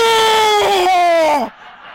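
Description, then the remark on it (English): A voice imitates the bellow of a bull grabbed by a Catahoula dog: one loud, drawn-out, high wailing cry that sags slightly in pitch over about a second and a half, then breaks off abruptly. “And that bull went,”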